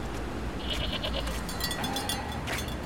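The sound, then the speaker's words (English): Goats crossing a road bleat several times in short, wavering cries over a steady outdoor background rumble, the calls overlapping one another. “Goats crossed the road.”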